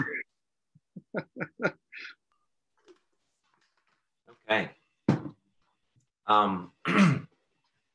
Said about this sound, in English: Sorry, that was a bad time to cough.